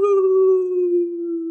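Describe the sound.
A voice imitates a ghostly boo, holding one long, steady, low-pitched moaning tone for over a second, loud and alone, fading slightly toward the end like a drawn-out howl.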